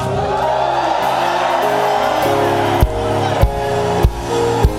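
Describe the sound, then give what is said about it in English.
A large audience at a Christian worship service shouts and whoops continuously, loud, over sustained music, with sharp drum hits landing every half second or so near the end. “I need you to release your shouts.”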